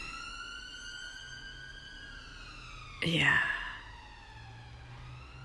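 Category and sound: signal or alarm, emergency vehicle siren passing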